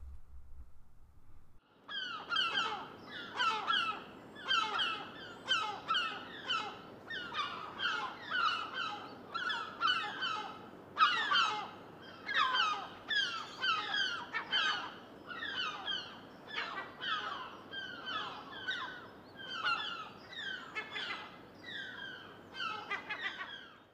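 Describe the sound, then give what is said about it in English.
Loud herring gull calls ring out continuously, a rapid series of harsh, nasal yelping yow calls and laughing ga-ga-ga bursts coming in quick rhythmic clusters, with no talking. “As I've already mentioned, the call of the gull is not going to win them any friends, but the yelping yow and laughing calls like ga-ga-ga of the herring gull are very familiar ones at the seaside.”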